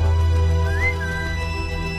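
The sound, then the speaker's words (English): A man whistles a breathy, flute-like tune from the film Avatar that glides upward and holds a high note, carried over a steady low droning hum, fairly clear and continuous for a couple of seconds. “Is that a flute? That's a flute.”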